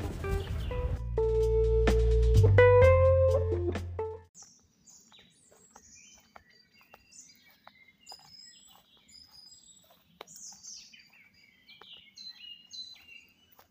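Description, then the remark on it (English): Blackbird song with varied chirps and warbling phrases, recorded in Bucks, plays in the open after a brief burst of music at the start, with several birds calling over a quiet outdoor background. “20 seconds of beautiful bird song from Bucks.”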